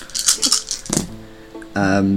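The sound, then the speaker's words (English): Several dice are rolled for a skill check, rattling and clattering for about a second in a quick burst of clicks, then a voice breaks in with a drawn-out vocal reaction. “No, apparently I don't, because that's all of those failed. Ooh. All of those dice are a fail.”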